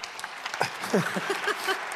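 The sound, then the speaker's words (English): An audience applauds with dense, steady clapping that runs through the whole stretch, with a few voices briefly rising over it midway. “They're clapping for you.”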